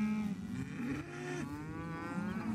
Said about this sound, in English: we were greeted by a chorus of mooing cows who were making their way towards the fence along the driveway in growing numbers. They just kept coming, waves of cows, an exciting welcome.